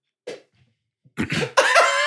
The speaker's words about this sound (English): It just sounded like you were trying not to cough.